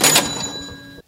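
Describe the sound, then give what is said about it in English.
A bright cash register ring, the bell's sustained metallic tone sounding over a brief mechanical clatter of the drawer, then fading out quickly. Loud, with no voices. “Get that cash register going, brothers.”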